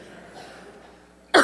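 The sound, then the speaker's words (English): After a stretch of near silence, a single loud cough bursts out abruptly and is cut off at the end. “It's dangerous to cough these days, right?”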